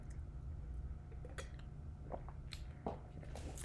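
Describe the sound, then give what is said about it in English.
Someone drinks water, with soft sips, small wet mouth clicks and a few quiet swallows over a low steady background hum. No one speaks. “hold on, let me drink some water.”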